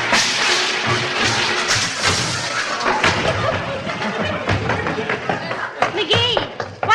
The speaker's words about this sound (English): Thrown? How? I shut the refrigerator door on the tassel of my bathrobe, started to walk away, and boom, flat on the hen fruit.